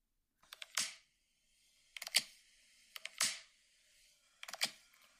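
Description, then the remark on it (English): An AirPod case opening and closing four times in a steady rhythm, each time a pair of light plastic clicks followed by a crisp snap, with silence between and no talking. “AirPod case opening and closing.”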